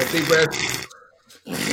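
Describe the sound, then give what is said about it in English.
A voice imitates heavy, rasping mouth breathing while asleep on the back, coming from the mouth rather than the nose: a long, loud, rough exhale with a gravelly, snore-like texture, a brief quiet pause, then another breathy rush begins. “And it's not even snoring coming out of my nose. It's like my mouth.”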